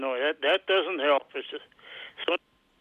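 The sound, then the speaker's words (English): A caller's voice on a cell phone call, tinny and band-limited, comes through in choppy bursts that garble and fade, then cuts out abruptly into near silence. “No, I think we've pretty much lost him. Cell phones. Frustrating.”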